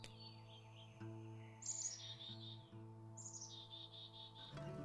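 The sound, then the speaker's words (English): Outdoor birds chirp in a backyard in bright, repeated descending trills, two clear bursts standing out over a steady low hum, with no one speaking. “These sermons are filmed in the place I'm lucky enough to call my backyard, so you might hear the sounds of birds, geese, roosters, trains, and wind, and sometimes my sweet pup Indy.”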